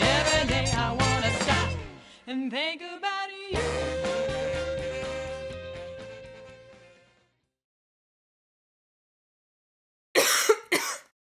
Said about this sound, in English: Excuse me while I cough up a lung. Excuse me.